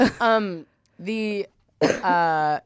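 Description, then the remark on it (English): Three croaky burps in quick succession from a person who has just drunk a Diet Coke, each a short voiced belch with a rough onset, fairly loud, separated by brief silences. “Sorry, I had a Diet Coke before this and I'm burping.”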